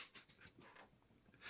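sneeze

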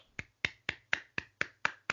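hands clapping

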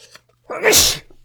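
sneeze

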